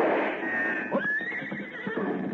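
A horse neighs, a loud, wavering whinny that climbs and then trails off over about two seconds, with faint shuffling hoof sounds underneath.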